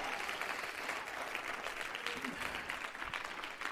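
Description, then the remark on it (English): An audience at a church service claps in a dense, steady wash of applause, mixed with scattered shouts and voices from the crowd, loud throughout. “Somebody clap your hands and shout yes.”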